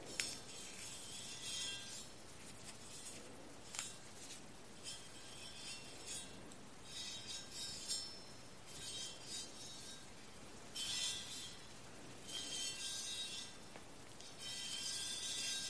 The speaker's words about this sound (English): These are quite beautiful, of no particular precious metal, yet they have so much history in them. Lots of swirls, detail work here. I love the curvature, the wavelength. Playing with the chimes.